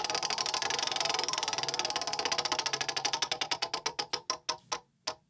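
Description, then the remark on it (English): A prize wheel spins with rapid, bright clicking that gradually slows, the ticks spreading farther apart until a few final distinct clacks and a stop. No one speaks. “And as promised, I will be spinning the wheel.”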